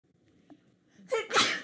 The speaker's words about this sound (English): Salud. Sorry, I had to sneeze.